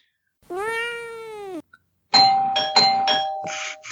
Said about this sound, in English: Was that your actual doorbell, or was that a button? It was a doorbell.